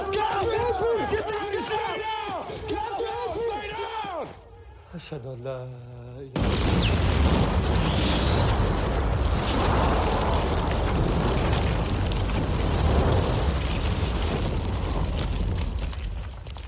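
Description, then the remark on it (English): Voices shouting "Get down!" give way to a sudden, massive bomb blast in a film scene that erupts into a long, loud roar of rumbling debris and noise lasting for many seconds. “James tries to cut the locks, but fails, and the man is killed in the explosion”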